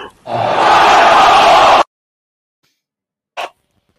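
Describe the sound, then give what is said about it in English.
A loud, sputtering raspberry blown with the mouth, a fake fart lasting about a second and a half, then silence broken by one brief, sharp burst of sound. “I made a fart sound with my mouth.”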